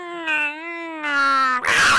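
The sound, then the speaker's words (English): A voice imitates barn cats fighting at night on a property in Sask (Saskatchewan): a long, wavering yowl in two swells, steady and tonal, that breaks into a short, harsh, hissing screech at the end. “When I was staying out in Sask, there was a bunch of barn cats out there on the property, and every night, for no reason.”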